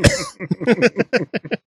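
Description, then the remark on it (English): A voice imitates open-mouth coughing on people: one harsh, breathy burst, then a quick string of about eight short, voiced hacking coughs, loud and rhythmic. “Just open mouth coughing on people.”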